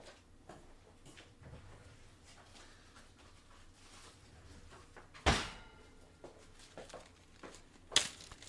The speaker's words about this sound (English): I think that was the first time you guys ever saw me open one of those drawers.